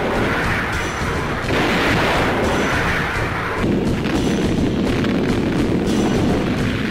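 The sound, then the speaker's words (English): Artillery bombardment at Iwo before the landing, lasting three days and nights, fills the whole clip with a loud, dense roar of overlapping explosions and deep thuds, shifting in texture a couple of times but never pausing. No voices can be heard. “3 days and nights of thunder and flame preceded the actual landing.”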